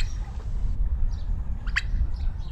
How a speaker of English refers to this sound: This is what a field full of relaxed, free-range turkeys sounds like.